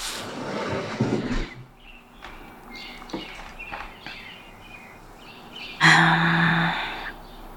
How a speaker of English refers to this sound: Okay, it is around 5:16 a.m. Oh, I can hear birds outside. I'll open the window so you can too.